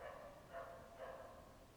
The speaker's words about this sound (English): It's a nice dog barking in the background. I think I'll not edit that one out, just so you can hear the dog.